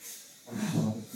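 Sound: voice imitating sniffing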